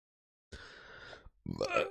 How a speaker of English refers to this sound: And I've got not hiccups, but burps now.